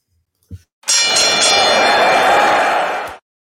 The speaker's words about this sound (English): All right, let's ring the bell and get going.